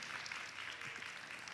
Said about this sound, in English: Thanks very much, everybody. Could we just give another round of applause to the choir